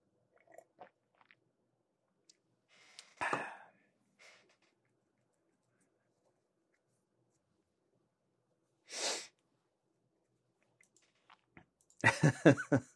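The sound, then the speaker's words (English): A few quiet mouth sounds from someone taking a quick sip of coffee: two short airy sips amid faint clicks and swallows, followed by a voice starting to talk at the end. “Well, I'm going to take a quick sip of coffee here, but I'm not going to slurp on the camera.”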